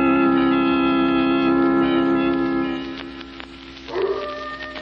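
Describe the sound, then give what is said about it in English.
A coyote howls from far off in the hills, one long sustained cry that slowly fades, then a second rising howl starts near the end. No one talks over it. “Not a sound anywhere, Lamont, except that coyote off in the hills.”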